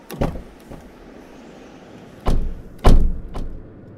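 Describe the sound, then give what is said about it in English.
Car doors open and shut with a series of solid thunks, a lighter one first, then two heavy slams in quick succession and a softer final clunk, with no talking. “Get in the car.”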